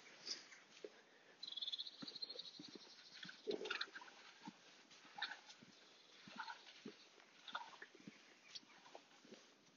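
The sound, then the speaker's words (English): Dogs bark in the deserted streets of a village, short irregular yaps scattered across the stretch, faint against a busy outdoor background with no one talking. “Dogs barking, presumably their owners have died and they're feasting on the owners' faces.”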